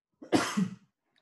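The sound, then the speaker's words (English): A single harsh, chesty cough from a person with a cough and cold, fairly loud, with a rough voiced rasp trailing off after the initial burst, then silence. “But apologies for any sound issues when I'm coughing through this podcast.”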